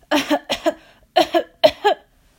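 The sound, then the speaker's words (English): A run of harsh coughs comes in four quick fits, each a sharp double hack, with short gaps between them and no talking. “couldn't stop coughing.”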